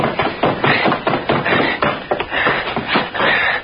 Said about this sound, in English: Roll down. Roll all the way down the stairs with him.